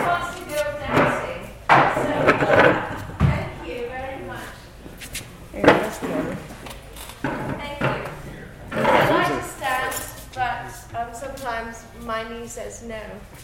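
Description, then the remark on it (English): A wooden chair is shifted and sat on, giving several sharp knocks and clunks at uneven intervals while people talk. “How about that one with the rounded back? That would probably be better.”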